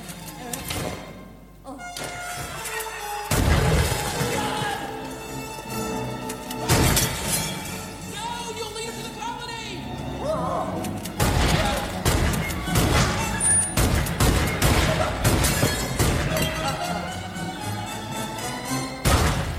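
Several loud shotgun blasts go off at irregular intervals, each a sharp booming crack, mixed with crashing and shattering noises and a busy, cluttered background, as an elderly woman shoots at a rat in her house, blowing holes in the wall.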